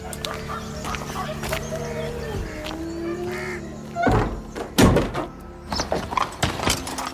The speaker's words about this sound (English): Close the door behind me. Don't let anyone else in. Keep it locked.